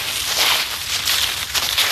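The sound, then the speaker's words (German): Dry leaves rustle and crunch underfoot in a forest in a steady, crackly shuffle, a continuous bright scratchy texture with slight swells as the steps go on, and no voices. “Oder in den Wald, wo das Laub so schön raschelt.”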